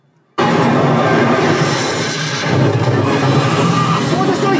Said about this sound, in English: Sounds are moving left to right. The explosions on either side of you. You can feel it a little bit coming up through the seat.